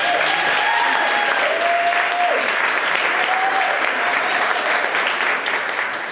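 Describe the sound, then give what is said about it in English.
A crowd applauds steadily for about six seconds, a dense, loud wash of clapping with a few faint cheers or whoops riding over it. “Clap it up, real. Clap it up.”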